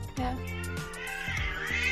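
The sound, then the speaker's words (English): A cat meows loudly, a drawn-out, wavering cry that rises and falls in pitch over a couple of seconds, with no talking. “Key has something to say about that.”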